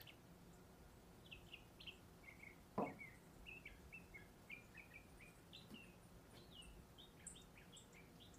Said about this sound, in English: No airplane, only singing birds. Oh, this is so good, so good.